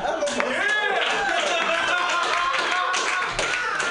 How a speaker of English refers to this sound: Round of applause there.